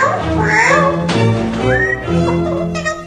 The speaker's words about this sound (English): If there's ever a Grammy Award for parrots, I am voting for that bird.